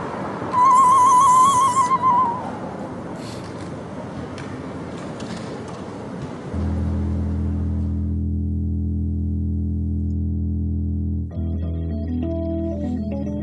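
A synthesizer cover played by over 20 New York City female keyboardists on vintage keyboards at Joe McGinty's Carousel Studio in Brooklyn, New York: a noisy, airy wash with a bright tone gives way to a loud, sustained low synth drone, then a repeating high melodic pattern picks up over it.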